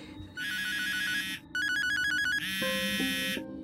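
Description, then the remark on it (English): A telephone rings in repeated bright electronic bursts, a warbling trill that pauses briefly and starts again, fairly loud with a lower tone joining near the end, no voices. “The phone rings.”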